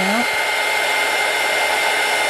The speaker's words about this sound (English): Dry that. Oh, where's my blow dryer?